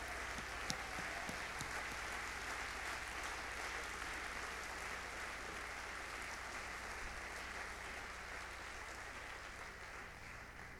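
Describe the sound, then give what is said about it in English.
An audience claps their hands in steady, dense applause that holds at an even loudness for about eleven seconds, with no voices rising above it. “Come on, if you want to be used by God, clap your hands.”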